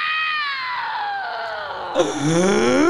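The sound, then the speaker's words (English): A voice lets out a loud, wavering screech imitating an octopus screaming underwater, its pitch sliding slowly downward before jumping up into a rising, strained wail, with no other sounds around it. “Do you think they scream when they orgasm?”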